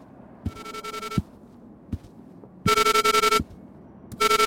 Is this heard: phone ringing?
yes